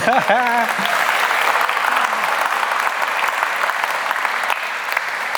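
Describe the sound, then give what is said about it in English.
A crowd bursts into steady applause, dense and continuous clapping filling the whole stretch at an even loudness, with a brief voice heard at the very start. “I know we're not all from the UK, but like the British culture of like, it's about money, but can I clap? Yes, you can.”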